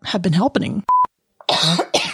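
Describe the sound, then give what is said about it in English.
Someone clears their throat gruffly, then a short electronic beep sounds, followed by two harsh, raspy coughs. “I got a frog in my throat.”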